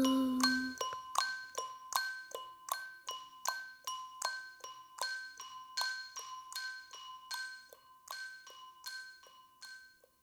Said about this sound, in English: I've got a little clock too. I listen to your clock. Please listen to my little clock too.